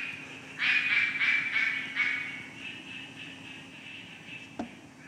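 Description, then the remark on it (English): A quacking frog calls in a run of five or six rapid, duck-like quacks, clear, then fades into a quiet background hum with one brief click near the end. “So this is the quacking frog.”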